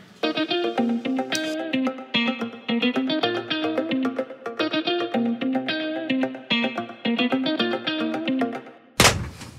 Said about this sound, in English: Oh my goodness, that was, wow, we're really loud. In my headphone anyway. That was the best clap we've ever had.